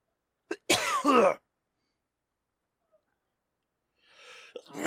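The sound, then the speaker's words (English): A loud sneeze right up against the microphone: a short intake, then an explosive burst lasting about half a second, followed by silence and a soft breathy rustle. “Bless you.”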